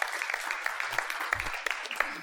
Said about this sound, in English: Got applause.